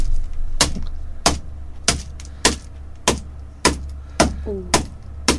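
A hammer strikes a Violet Crumble chocolate bar, still in its packaging, about nine times in a steady rhythm, each blow a sharp, crackly smack over a low, constant hum.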